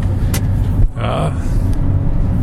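A car drives through fairly light Friday commuter traffic in Los Angeles, its steady low engine rumble continuous, with a brief airy hiss and faint passing road noise mixed in.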